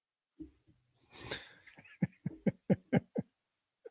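A raspy, wheezy intake of breath followed by a quick run of six or seven short coughs in rapid succession, fairly soft and without any talking.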